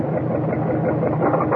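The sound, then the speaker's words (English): An old car, said to have been a grandfather's, runs steadily with a loud, rough, rattling low rumble that holds constant throughout, while smoke comes up through the floorboard; no voices. “that was called Rattle Trap Car”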